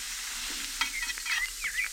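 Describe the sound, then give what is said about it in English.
Hamburgers sizzle on a hot griddle at an outdoor family barbecue in a steady crackling hiss, with a few brief scraping squeaks rising through it as a hamburger is turned over, and no voices. “How long do I have to listen to them sizzling there on the griddle?”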